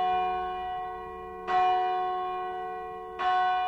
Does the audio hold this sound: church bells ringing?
yes